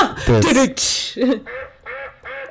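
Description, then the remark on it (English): A series of nasal, duck-like quacks from a novelty fake telephone: one loud quack, then a broad burst, then three fainter, evenly spaced quacks trailing off. “That's just the quack noise.”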